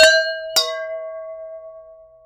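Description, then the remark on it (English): Two bright clinks of glasses of rosé wine touching in a toast, about half a second apart, each leaving a clear, sustained ring that slowly fades. Fairly loud, with no talking. “I need a glass of wine, so. Same. Cheers. Cheers.”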